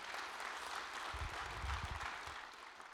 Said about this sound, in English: So you were married? 65 years. Wow. Five kids. Five kids. Yeah. That's worth clapping.